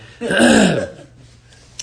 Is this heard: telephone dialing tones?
no